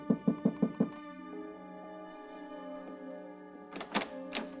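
A quick, evenly spaced series of five firm knocks on a wooden hotel room door (room 1016 at the Roosevelt Hotel), clear, followed by a sustained musical tone that swells with a few soft accents.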